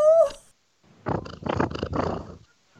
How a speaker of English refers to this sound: That was very cute. Did you pick purrs up? Yeah, she purred.